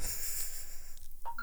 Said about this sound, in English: There's a professional phone beeping.